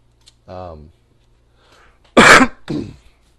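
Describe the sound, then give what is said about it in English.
A short voiced throat-clearing sound followed by a loud, harsh cough burst and a smaller second cough, with a quiet background hum. “Your cough was loud.”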